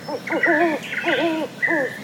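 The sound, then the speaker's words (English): An owl hoots several times in a quick, wavering series, the calls clear against a quiet background on a foggy trail, with no talking. “The path here is barely visible because of the fog, but I hear the beating of an owl.”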